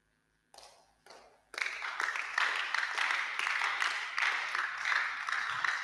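Audience clapping that starts with two short bursts, then swells into steady, dense applause from a crowd that continues evenly to the end, with no voices on top.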